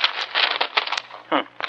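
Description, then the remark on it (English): Dry newspaper crinkling in irregular rustling bursts as newspaper wrapped around a gun is handled and pulled open, with a brief voice breaking in near the end. “this newspaper the gun's wrapped in is today's paper”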